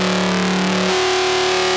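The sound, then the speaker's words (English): Sustained synthesizer tones built from sine waves, thickened by gritty distortion from an emulation of the Culture Vulture. A low pitch holds, then glides and shifts partway through while higher harmonics buzz steadily. No voices. “So this is an example of a sort of that kind of technique where I'm using an emulation of the Culture Vulture on this sound. And then these are sine waves.”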